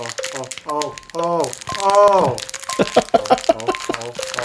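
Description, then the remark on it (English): Crinkling plastic wrapping as a toy figure package is opened, revealing a A Bug's Life character: a steady run of sharp, bright crackles and rustles, with voices talking and exclaiming over the top throughout. “Hey, listen to that rapping.”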